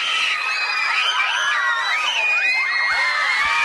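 A large crowd of young girls screaming and cheering at once, a dense, high-pitched wall of shrieks and whoops that stays loud and unbroken throughout, with no one speaking over it.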